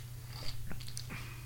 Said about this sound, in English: If that's okay, if I can just do a little sipper here. Do it up. We got this J.P. Weiser's Deluxe Canadian Whiskey. And we're going to do a little. I've been sipping on it all night, man.